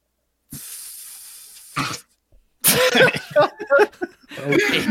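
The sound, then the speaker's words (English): A voice makes a sustained breathy hiss for about a second and a half, imitating a tea kettle building to a whistle, followed by loud bursts of coughing laughter. “Not to imitate the sound of a tea kettle before it goes off.”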